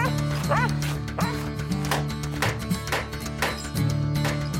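A dog barks repeatedly in short, sharp yips and woofs, about half a dozen spread irregularly across a few seconds, loud over a steady musical background hum.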